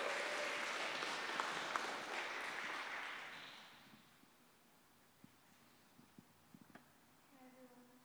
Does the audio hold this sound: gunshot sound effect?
no